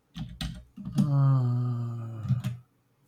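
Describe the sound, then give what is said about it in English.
A handful of sharp keyboard clicks come in a loose, irregular rhythm, with a steady vocal hum holding underneath for about a second and a half in the middle, as someone types an online search for ML Campbell cement. “Sometimes the internet sucks. That and my typing.”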